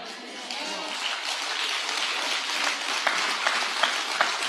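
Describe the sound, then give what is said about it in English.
A crowd at a service applauds steadily for a few seconds, a dense wash of many hands clapping at once with a few sharper individual claps standing out toward the end. “You clap for that one.”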